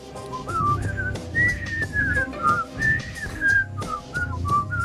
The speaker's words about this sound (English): Can we all whistle the theme to Andy Griffith?